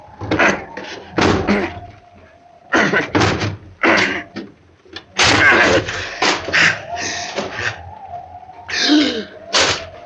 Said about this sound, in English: The door is locked. I'll have to break it down.